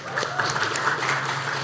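An audience applauds, a dense, steady wash of many hands clapping at moderate loudness, with scattered sharper claps standing out and no voices on top.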